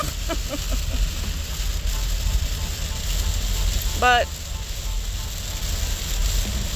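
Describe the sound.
Steady rain hisses throughout, a dense, even wash of noise, with a brief spoken word cutting through partway in.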